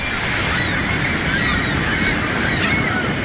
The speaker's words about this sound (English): And up next, a gull that protects terns sometimes is today's featured feathered friend, presented by Birdwatching Magazine.